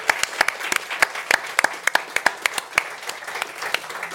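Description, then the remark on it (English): A crowd applauds steadily for Ireland's delegation travelling to the Games, with many sharp hand claps ringing out over a dense wash of clapping, keeping an even, lively level throughout. “Can we give them a big 123.ie round of applause?”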